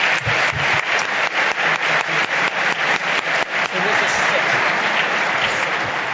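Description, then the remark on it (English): Sustained applause from an audience for the panelists at the end of a panel discussion, a dense wash of many hands clapping steadily and loudly for several seconds, with no one speaking over it. “Thank you very much to our panelists. Round of applause.”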